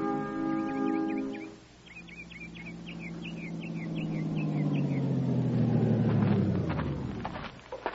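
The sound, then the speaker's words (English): A truck engine rumbles, growing louder, its low drone sliding down in pitch as it rolls past along a dirt road across a ravine leading to Floyd Mason's farm, while small birds chirp in quick bursts in the background. “Truck turned down that dirt road, Captain.”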